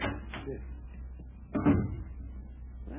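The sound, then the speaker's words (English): A single clothes closet door swings shut on a noisy alarm clock placed inside, partway through, with a short, dull thump, preceded by a few faint shuffling and handling sounds over a steady low background rumble. “just put it in the clothes closet and close the door.”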